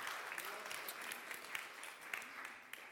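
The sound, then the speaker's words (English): An audience claps steadily for the speaker's brother as he is called up to help, dense overlapping hand claps at moderate volume with a few sharper claps standing out, continuing without pause for the whole stretch. “Yeah, give him a clap.”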